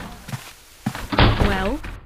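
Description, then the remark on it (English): A door swings shut with a solid thunk, preceded by a couple of soft knocks and followed by a brief creaking, fairly loud. “the door, please.”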